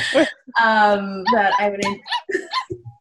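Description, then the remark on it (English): A dog barks outside a car in a quick run of short, high-pitched yelps and whiny barks, fairly clear, lasting a few seconds. “Is that a puppy?”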